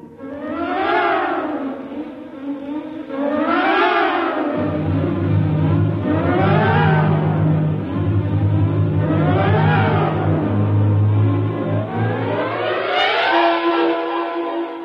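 A loud engine runs steadily while being revved over and over, its pitch climbing and falling in regular surges every few seconds, with a deep rumbling drone underneath.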